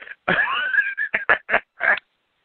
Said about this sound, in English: Oh shit, the parrot squawked. That's awesome. The parrot's star of the show, straight up.